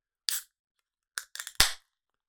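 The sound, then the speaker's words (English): A beer bottle being opened: a short metallic scrape, a few quick clicks of the opener on the cap, then a sharp pop with a brief fizzy hiss. No voices. “So let's give it a crack.”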